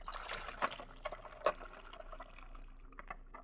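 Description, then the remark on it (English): Water trickles and splashes steadily while dinner dishes are rinsed in a kitchen, with a few sharp clinks of crockery around the first and second marks; fairly quiet, with no voices. “Mrs. Thompson is in her kitchen, and she's getting ready to do her dinner dishes.”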